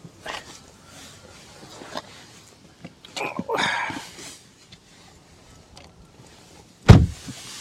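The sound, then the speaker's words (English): Shuffling and rustling of someone climbing into their car on a windy day, followed by a single loud car door slam near the end, then quiet. “I'm gonna go in the car so that I can finish talking.”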